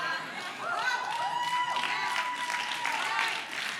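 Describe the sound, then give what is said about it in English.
An audience claps steadily for several seconds, a dense wash of hand claps with a few voices calling out over it, holding at a fairly even loudness throughout. “Those that are clapping, they know what Judah means.”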